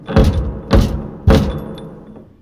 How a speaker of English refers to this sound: Someone's at the door. To see me. That is a surprise indeed.